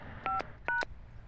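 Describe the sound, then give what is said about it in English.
Two short telephone keypad tones beep in quick succession as a phone number is entered into WiMactel's automated billing system for Bell Canada, each a steady dual-pitched DTMF chirp of about a sixth of a second, over a faint background hiss. “Please enter the area code and number you are calling, followed by the pound sign.”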